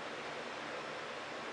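Higgins Brau Oktoberfest 2018 beer pours steadily into a Panthers glass, a soft continuous fizzing rush that holds even for the whole moment, fairly quiet, with no voices.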